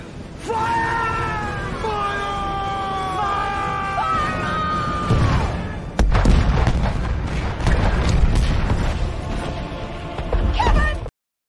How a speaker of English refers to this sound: The Kevin Cannon, it has been fired.